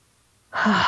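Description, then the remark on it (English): After a moment of silence, a single deep, breathy exhale rushes in fairly loud, with no talking around it, as a person breathes deeply during a guided breathing exercise. “And now start breathing deeply.”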